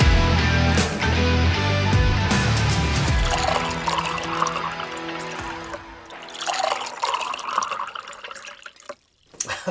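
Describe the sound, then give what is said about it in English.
Liquid pours steadily into a glass, a bubbling, gurgling stream that shifts in pitch as the glass fills, ending with a brief pause and a few final splashes. “Healthy pour.”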